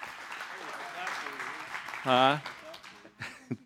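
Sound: audience clapping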